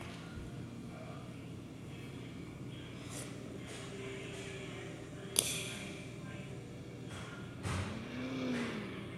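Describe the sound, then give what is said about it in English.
A video game race car engine, a number 62 Chevrolet being brought up to the line, drones low and steady at moderate volume, with a sharp click midway and a brief rising rev near the end. “All right, let's get that 62 up to the line in my beard oil Chevrolet.”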